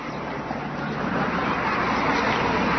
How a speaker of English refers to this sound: And we're seeing more traffic now all of a sudden, although somehow seems louder tonight for some reason, doesn't it?